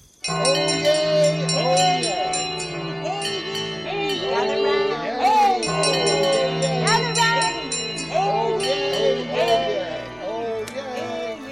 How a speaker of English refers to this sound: With that, let's extract the county criers from all the fun of the toad fair and ring out the bells of St. Clement's to welcome us to Middlesex.